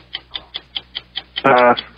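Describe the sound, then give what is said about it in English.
A game show countdown clock ticks in a fast, steady rhythm, about five ticks per second, during a 45-second sports trivia round, with a brief tonal vocal sound breaking in near the end. “First and last name, 45 seconds on the clock.”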